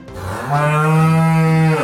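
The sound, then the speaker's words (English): A single long, loud cow moo, a steady low droning bellow lasting almost two seconds with no voices. “You guessed it, livestock. Yup, cows are emitting gases that are warming our atmosphere.”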